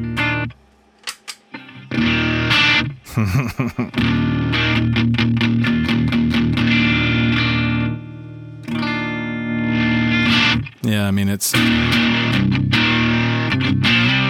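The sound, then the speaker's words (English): Electric guitar through a Super Atmod overdrive pedal in at mode, with level just past noon, drive at about 10 o'clock and treble at about 2 o'clock. Strummed chords ring out with a warm, slightly gritty edge like a pushed amp, broken by a few short choppy hits. A voice speaks briefly at the start. “sounds like a pushed amp without being too over the top.”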